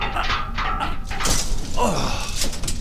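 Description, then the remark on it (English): People trapped inside an elevator try to force its door open: rough metallic scraping and clunking bursts over a couple of seconds, fairly loud, with strained grunting voices mixed in; the door won't budge. “Jim, help me get this door open. Oh, it won't budge.”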